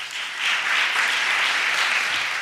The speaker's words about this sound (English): Some council members applauded, but others balked.